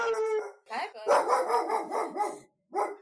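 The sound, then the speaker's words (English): A dog lets out a drawn-out howl, then a rapid string of agitated barks and yips, and after a brief pause one more sharp bark, reacting to someone walking their dog in front of the window. “Someone's walking their dog in front of our window and he's not having it.”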